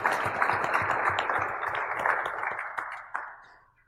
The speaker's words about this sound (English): All of you that put your hand up earlier that are contributors to open source. Can we just give the contributors a round of applause?